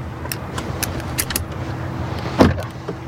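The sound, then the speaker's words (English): Inside a car, the standard power door locks engage with one solid mechanical clunk, preceded by a few faint clicks over a low, steady cabin rumble. No one speaks. “Power door locks, standard, of course.”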